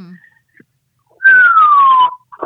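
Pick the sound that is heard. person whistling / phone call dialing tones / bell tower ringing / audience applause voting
person whistling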